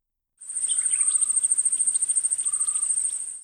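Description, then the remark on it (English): Jungle ambience with a steady, high-pitched insect drone running throughout, overlaid by scattered bird chirps and a few short whistled calls. No voices. “I was in a jungle.”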